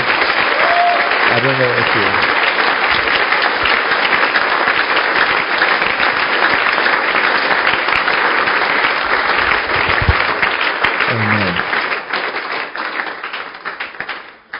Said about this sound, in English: I don't know whether you are clapping or you are not clapping.